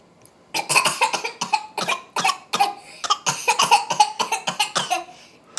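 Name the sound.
person coughing on request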